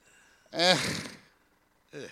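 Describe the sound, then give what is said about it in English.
A single loud sneeze: a sharp voiced intake that bursts into a hissy, breathy blast and fades over about a second, followed by a brief vocal sound. “Oh, God bless you. Yeah, God bless you.”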